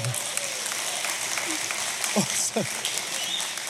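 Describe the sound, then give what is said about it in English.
An audience claps steadily, a dense, crackling wash of many hands that stays fairly even throughout, with a couple of brief voices or whoops rising over it partway through. “So, yeah, you can clap. You can clap.”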